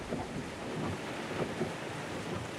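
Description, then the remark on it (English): Heavy driving rain pours down in a dense, steady roar, with a low rumble underneath and no voices, loud throughout, during a slow car journey with the windshield wipers working at full speed. “It was slow going in the driving rain, the windshield wipers working at full speed.”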